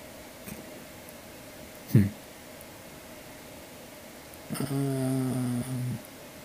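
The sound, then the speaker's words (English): A voice imitates a dog barking, giving a short run of low, gruff woofs after a brief thump, moderately loud over a faint background hiss. “they heard the sound of a dog barking.”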